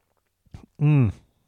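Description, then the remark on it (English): A quick sip of wine with a few soft wet clicks, followed right away by a loud, satisfied voiced 'ahh' sigh, then quiet. “So while I think about that, I'm going to have this sip of reading wine.”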